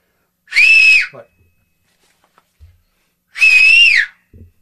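Two loud, shrill whistles by a person whistling as loud as they can, each about half a second long with a slight rising-then-falling pitch, separated by a few seconds of near silence with faint bumps.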